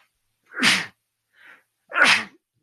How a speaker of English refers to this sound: Excuse me. It's always three. Always three. My whole life it's been that way. Anyway, when I start to sneeze, it's always three. Sorry about that.